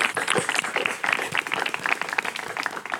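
A crowd applauding: dense, steady clapping from many hands that holds at an even, fairly loud level for about three seconds, with no talking.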